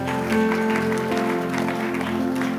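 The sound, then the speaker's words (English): An audience claps for God together in a steady, dense burst of applause, with sustained keyboard or organ chords holding underneath throughout. “Give God a good clap.”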